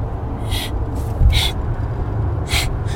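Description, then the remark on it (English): A person imitates someone's snoring from the previous night with a few breathy, rasping inhales and snorts in an uneven rhythm, fairly loud over a low rumbling background. “Which is that last night, you're snoring... is the most annoying thing I've ever heard.”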